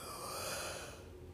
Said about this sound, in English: Ooh, I keep yawning, y'all. About my bedtime.